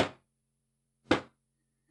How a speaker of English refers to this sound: There was a knock at the bedroom door.